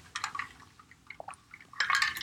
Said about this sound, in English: So I need to get a drink of my water.